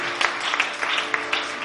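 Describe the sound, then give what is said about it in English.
A crowd claps steadily for a pastor of the Kojokrom branch, a dense wash of many hands with a few sharper individual claps popping out, fairly loud and sustained throughout without any voices. “And can you clap for him?”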